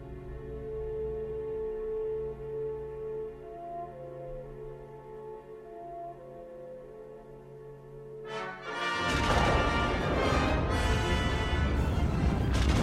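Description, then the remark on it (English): A deep, roaring explosion of the Death Star being destroyed bursts in after a stretch of sustained orchestral-style tones, then keeps rumbling loud and wide for several seconds, swamping the music beneath it. “Look, another explosion.”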